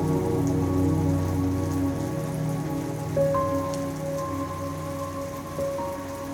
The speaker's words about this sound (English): as the rain falls and crashes into puddles, splashing back up in the air